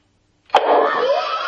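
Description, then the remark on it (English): A vacuum cleaner switches on abruptly after a moment of silence, its motor surging up into a loud, steady, airy whine that holds without pause. “That sounds like a vacuum cleaner.”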